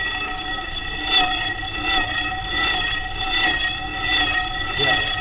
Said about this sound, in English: and I'm going to swing this rope around my head. So the speaker is swinging around my head as it plays this noise. So I'll start the noise. I'm just going to walk away. And hopefully your listeners should be able to hear when I start swinging this.